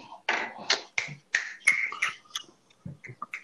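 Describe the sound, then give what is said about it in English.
A rapid, uneven run of crisp finger snaps, about a dozen sharp bright cracks, the early ones loudest and later ones lighter, with no talking. “I think that was the loudest snap ever, my nigga.”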